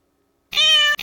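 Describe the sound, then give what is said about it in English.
A person imitates a cat's meow: one long, bright, drawn-out meow after a brief silence, then a second meow that starts right away and is cut off. Fairly loud. “Meow, meow. Very calm.”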